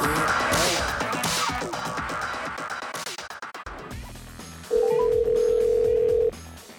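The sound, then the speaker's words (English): A busy musical passage fades into a phone call to Mick Schaefer connecting, followed by a single steady ringback tone held for about a second and a half, fairly loud, with no talking. “I hope I have now prepared you for the nature of our relationship, because I'm dialing Mick Schaefer right now.”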